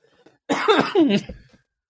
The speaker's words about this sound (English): Don't make me laugh. You're going to make my cough come back, man.